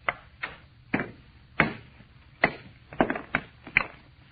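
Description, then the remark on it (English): A hammer strikes a stone thought to be a meteor about nine times in an uneven rhythm, trying to break it along a fissure until it splits clean in half, each blow a sharp, hard crack with a short rattle after it. Nobody speaks. “All I'm going to do is try and break it along this fissure.”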